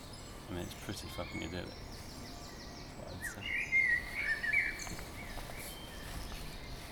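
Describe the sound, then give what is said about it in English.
Birds chirp and twitter in the background at a platform over a dense, steady ambient wash, with a brief burst of livelier song near the middle before settling back to scattered calls. “Yeah, because there's a bell in the background and there's some birds.”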